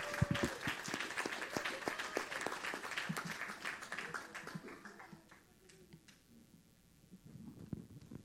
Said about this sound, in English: It's good to have our guest here today. Give them a hand clap of appreciation.